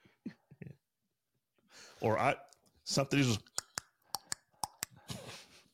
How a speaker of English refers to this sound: You're fooling around. You're looking in a drawer over there